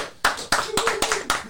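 clapping

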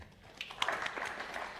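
audience applause

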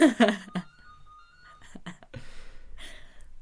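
mobile phone ringtone playing

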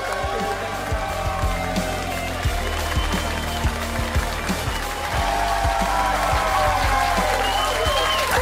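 audience applause

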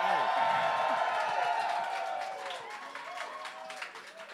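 audience cheering and applauding

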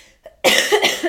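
cough

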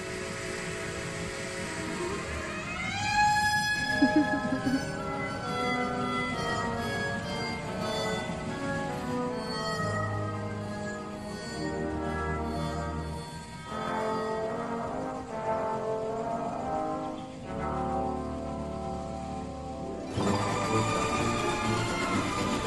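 train whistle

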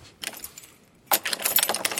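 bunch of keys jangling

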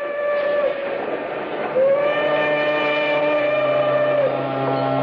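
steam train whistle

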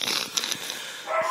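dog barking

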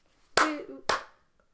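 rhythmic hand clapping pattern

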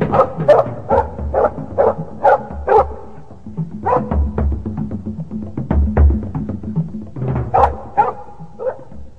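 dogs barking

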